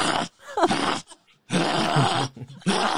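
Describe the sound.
A person imitates the bark of Tippy the dog, letting out several loud, raspy, growling bark-like bursts separated by short pauses.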